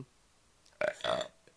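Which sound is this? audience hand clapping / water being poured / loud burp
loud burp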